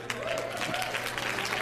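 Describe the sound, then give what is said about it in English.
An audience applauds, a dense, steady wash of many hands clapping that holds at an even level for the whole moment, with a faint voice briefly audible underneath. “Yeah, hold on a second. You're gonna applaud in a minute”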